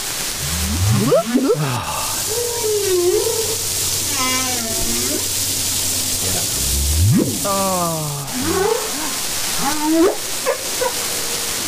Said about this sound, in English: Yeah, here's the humpback whale. Oh, it's just beautiful. Oh, my God.